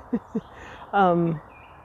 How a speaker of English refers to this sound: Yes, that's a very loud bird.